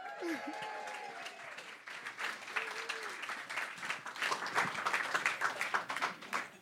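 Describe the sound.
A crowd applauding steadily, dense rapid clapping that grows louder toward the end, with a few voices and cheers mixed in early on.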